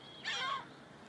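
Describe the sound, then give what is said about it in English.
A single harsh, squawking call from a gull repeatedly flying around rings out briefly and clearly, with only faint background hiss around it and no talking. “And see if you can notice how your mind responded to the sound of the gull repeatedly flying just generally around me.”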